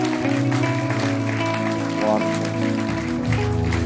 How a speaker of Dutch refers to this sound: Come on, why don't we give these guys? Laten we deze mensen een applaus geven. Geweldig.